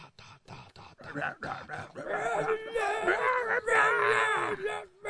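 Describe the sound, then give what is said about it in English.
Choppy, clipped vocal bursts give way to a long, loud, wavering scream as a person screams right into the microphone, which they call music, held for several seconds with a strained, howling tone. “I call this music when I scream into the microphone.”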